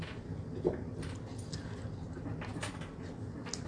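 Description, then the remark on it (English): Dogs eating, with soft crunching and clicking bursts scattered irregularly over a low, steady background rumble. No one speaks. “Fun to eat when the dogs are eating.”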